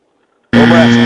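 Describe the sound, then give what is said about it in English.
After a moment of silence, a loud buzzer blares abruptly and holds steady, a harsh, harmonically rich drone that stays at full volume to the end. “Give me a buzzer there, Brass Eye.”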